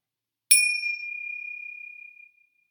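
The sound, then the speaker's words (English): A single meditation bell is struck once during a 12-count breathing practice, with a bright, clear attack, then rings out as a sustained high tone that slowly fades over about two seconds. No voices are present. “And wait for the bell, and we're going to do one more 12 count breath again.”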